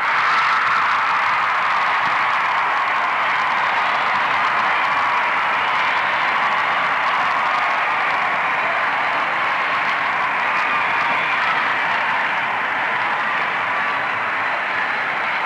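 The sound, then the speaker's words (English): A large convention crowd cheers and applauds after a resolution on reproductive freedom is adopted, a loud, steady roar of clapping and shouting that holds constant for the whole stretch without dying down. “It took a while to quiet down the crowd long enough to call the roll, but the chair managed it and counted the votes.”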